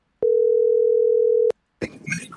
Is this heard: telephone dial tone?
yes